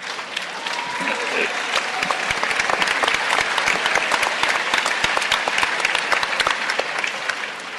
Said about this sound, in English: It duly deserves a huge round of applause because two things.